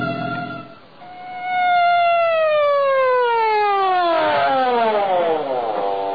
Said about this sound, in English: So why the siren? The only traffic out here is on horseback.